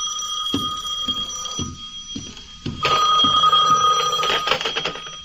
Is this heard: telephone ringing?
yes